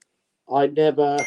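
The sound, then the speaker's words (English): A phone goes off with a loud electronic ringtone, three short buzzy tonal bursts in quick succession after a moment of silence. “Let me just turn the phone.”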